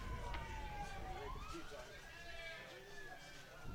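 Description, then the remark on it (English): Fire truck sirens wail nearby, near the broadcast location of a baseball game, with rising and falling tones that overlap throughout, fairly close and steady, over a constant low rumble of background noise. “So you hear the fire trucks nearby.”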